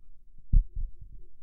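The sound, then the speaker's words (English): A low, muffled heartbeat thumps in a steady lub-dub rhythm, several deep, soft beats against a quiet background, with no voices. “I close my eyes again and I try to hear Cretus's heartbeat. Yeah, you hear it.”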